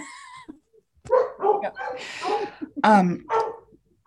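A dog barks in a quick series of sharp, close yaps and whines, the bursts coming in an uneven rhythm with brief gaps between them.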